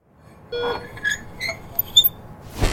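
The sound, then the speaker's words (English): A series of short, high-pitched squeaks chirp out one after another, fairly sharp, like rubber soles squealing on a polished hospital floor, ending in a brief scuffing burst. “Hospital squeak.”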